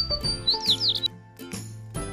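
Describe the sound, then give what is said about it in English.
A quick burst of high, bright sparrow chirps, several short tweets bunched together, heard over a low, steady background hum, with no one speaking. “The sparrows.”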